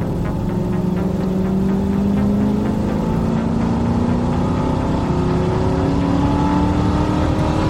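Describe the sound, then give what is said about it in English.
A car engine roars steadily, its pitch climbing as it accelerates hard down a road as fast as it can go, with a constant rush of road and wind noise filling the background throughout. “I remember driving down the road, going as fast as I possibly could make the car go, half looking in my rear view mirror, waiting for those headlights to appear.”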